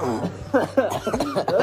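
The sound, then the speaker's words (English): Someone clears their throat, a quick series of short, gravelly voiced bursts with brief pauses between them, no words spoken. “I had to clear my throat.”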